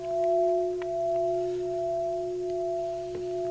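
A struck metal bell rings on in a long, steady sustain: a clear low hum with a higher overtone above it, holding evenly for several seconds with no voices.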